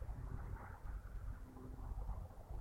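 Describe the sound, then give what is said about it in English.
A low, steady engine rumble of a car passing in a small town with little traffic, fairly quiet and continuous, with a windy outdoor hiss and no one speaking. “Another car goes by.”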